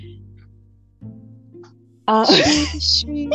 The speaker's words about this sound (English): Bless you. Sorry, that's a very cute sneeze.